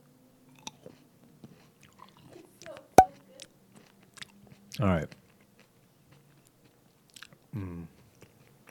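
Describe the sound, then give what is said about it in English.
Chewing and biting of crunchy food, with a sharp snap near the start and a few loud crunching bites, quiet mouth sounds between them and a brief spoken remark. “It's not going to be as crunchy, though.”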